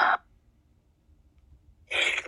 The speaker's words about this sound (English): I'm about to sneeze.